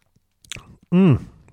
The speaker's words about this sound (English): And anyway, let's have a sip of Reading wine.